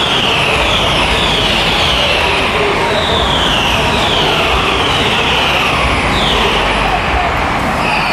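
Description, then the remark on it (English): A loud, dense roar of racing cars without wings accelerating past one after another at a restart, after the safety car pulls into the pits, heading into the first corner, their high engine whines sweeping by in repeated waves over a constant rumbling wash of noise. “The safety car pulls into the pits. The first car appears at the start of the first corner, the last corner.”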